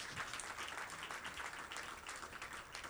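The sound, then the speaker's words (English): An audience claps steadily as a clap offering to the Lord during a sermon, many hands blending into a dense, continuous burst of applause that holds at an even level throughout. “Oh, somebody give the Lord a mighty clap offering.”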